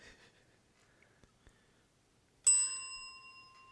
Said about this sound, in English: I'm not sure if I should say something right now. I heard the bell,